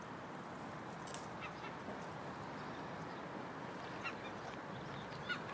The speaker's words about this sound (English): It's little Sid the Seagull up there. Sydney the Seagull! Hello! Hey, it's like he's dancing around in the sky or something. I wonder if he's singing.